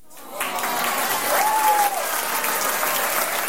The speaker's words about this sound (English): Hold on, let me throw in a round of applause there.